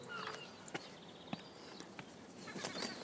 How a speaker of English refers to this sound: Seagulls!